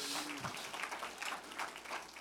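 An audience claps for Jesus in a dense, steady burst of applause, many hands overlapping into a broad, crackling wash with no voices standing out.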